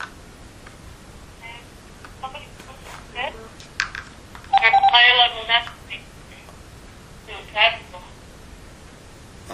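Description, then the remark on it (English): A caller's voice comes through a bad phone line, thin and tinny, breaking into choppy, warbling fragments with a louder garbled burst midway and scattered digital chirps over a faint hiss. “Your voice is like going up. I don't know, this is the phone maybe is messed up.”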